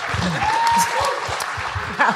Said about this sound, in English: A round of applause for Keisha's tassels. Keisha Castle-Hughes. Well done.